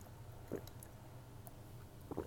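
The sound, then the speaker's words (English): Two soft, brief sips of homemade lemonade, one early and one near the end, over quiet room tone, with no talking. “As I sip my lemonade, my homemade lemonade, no artificial flavors, no artificial colors, and that big burst of lemonade just went in my mouth.”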